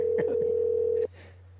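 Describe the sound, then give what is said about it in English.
A steady, unbroken telephone tone with a low hum beneath it holds for about a second, then cuts off abruptly, leaving faint noise behind; brief murmurs flicker over the tone's start, as Horse Radio Network hosts place a call to a guest. “Remember to tell her you're from the Horse Radio Network so she doesn't hang up on you.”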